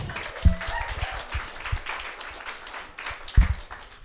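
An audience applauds with a dense, steady patter of claps lasting about four seconds, broken by two louder low thumps near the start and end. No one speaks over it.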